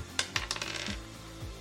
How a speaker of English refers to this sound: Roll me a d8.